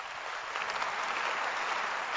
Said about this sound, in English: Clap your hands.